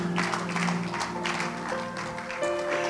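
An audience at a sermon claps steadily and loudly for the Lord, a dense wash of overlapping hand claps with sustained keyboard or organ tones underneath, and no talking.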